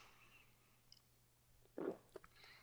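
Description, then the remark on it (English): A quiet sip of beer: one short wet slurp and swallow, followed by a couple of small mouth clicks, with no talking and a faint steady hum underneath. “I'm gonna take a sip of beer just thinking about perfect pour too.”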